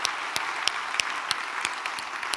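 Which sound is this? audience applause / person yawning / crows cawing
audience applause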